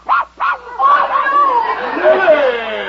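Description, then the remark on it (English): A small dog in a basket lets out two quick, high-pitched yaps, then a continuous voice carries on loudly right after the barks. “Big jerk, get that dog out of here.”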